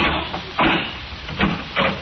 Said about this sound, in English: You see the door? Airtight. Airtight, yes, indeed. I'll open it.